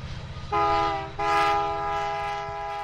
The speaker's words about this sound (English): Right now, nearly all of the Powder River Basin's coal heads east and south on trains like this one, bound for power plants around the U.S.